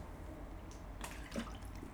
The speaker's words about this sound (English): I'm gonna drink my yak.